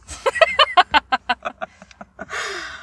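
A rapid run of about a dozen clucking bird calls, loud at first and fading steadily, ending in a short burst of breathy, hissing noise.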